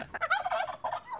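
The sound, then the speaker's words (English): Wild turkeys gobble in a quick, rattling burst of warbling calls, moderately loud, with a brief pause before a final shorter gobble trails off. “All the turkeys will, like, walk in.”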